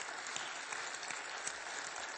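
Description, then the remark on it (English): A church audience applauding together, a dense, steady wash of many hands clapping at once, fairly loud and sustained throughout with no voices standing out. “Give the Lord a good hand clap first, would you please?”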